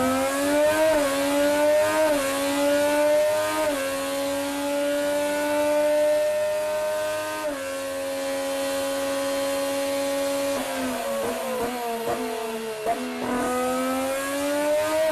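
A loud Honda racing car engine screams, its pitch climbing steadily and dropping with each gear shift, repeating several times over a continuous high-revving whine with no voices.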